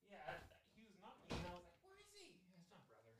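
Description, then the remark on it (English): A single loud knock thuds against a door partway through, briefly cutting through people talking. “Why is he knocking? He doesn't have a house key?”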